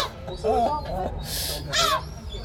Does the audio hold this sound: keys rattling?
no